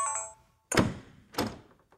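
A door thuds shut, followed a moment later by a second solid clunk of the lock, preceded by a brief fading electronic tone.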